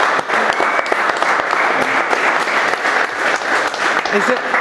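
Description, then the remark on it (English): A crowd applauds steadily for several seconds after a speaker finishes a talk, a dense, even wash of many hands clapping at once, loud and sustained without a break. “Yeah, you can clap if you like.”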